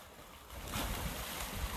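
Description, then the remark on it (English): Four dogs splash and play in a river in hot weather, the water splashing and churning in a steady rushing wash that swells louder after a moment and keeps going, with a windy hiss over it and no voices. “And as you can hear, them all splashing around in the water behind me, having an absolute whale of a time.”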